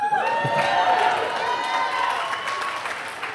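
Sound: audience cheering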